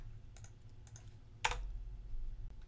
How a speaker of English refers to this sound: We'll put in Hermione's password. Actually, that wasn't it. I started just typing a password I'm used to. Let me copy that password.